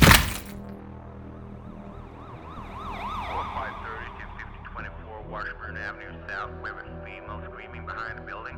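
A police siren wails in a rising and falling warble at moderate volume, holding steady over several seconds as a busier jumble of warbling tones and clatter joins in partway through.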